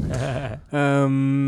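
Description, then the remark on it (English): A person imitates snoring with two loud, voiced groans: a short wavering one, a brief pause, then a longer steady droning tone. No other sounds. “Yeah, keep snoring.”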